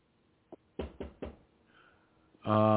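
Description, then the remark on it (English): Three firm, evenly spaced knocks on a door ring out, preceded by a faint single tap, before a loud voice abruptly starts speaking. “But for anyone out there that's not vaccinated, they're going to be knocking on your door.”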